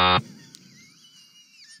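A short, loud, harsh buzzer blast that cuts off after a fraction of a second, followed by a quiet stretch with faint, thin high-pitched tones.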